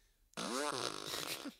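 A single loud fart noise, a buzzy, wavering blast with a bending pitch that lasts just over a second before trailing off, with no talking around it.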